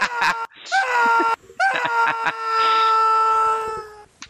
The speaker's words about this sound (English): I'm just going to put screams over you.